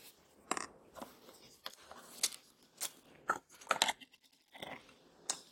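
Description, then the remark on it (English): Crisp crunching and chewing as someone bites into chicken, a run of sharp irregular crackles over about five seconds with no talking. “so I'm going to eat this chicken first.”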